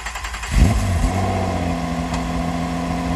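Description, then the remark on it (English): A sports car engine fires up with a deep rumble, then revs and accelerates, its steady harmonic roar holding loud with no voices. “In a perfect world, your real estate business would be like a sports car.”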